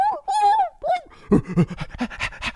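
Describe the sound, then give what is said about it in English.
A dog whimpers with a few high, drawn-out whines, then breaks into quick, rhythmic panting. Fairly loud, with no other sounds around it. “They always fucking barking or whimpering or doing something.”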